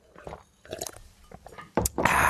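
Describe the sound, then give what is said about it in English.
Someone takes a swig of water from a bottle: a few soft wet gulps and mouth clicks, then a loud crackling rush of noise at the end, like plastic crinkling as the bottle is squeezed. “I'm going to take a swig.”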